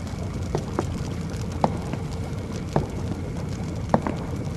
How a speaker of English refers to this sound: The professor stands next to the monster by an enormous furnace with a brood of angry, crackling flames snapping within it.